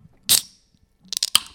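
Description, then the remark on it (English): A tall 16-fluid-ounce can of sparkling water is cracked open: a sharp pop with a short bright hiss, then after a pause a flurry of crackly fizzing snaps. No one speaks. “Let me crack this puppy open.”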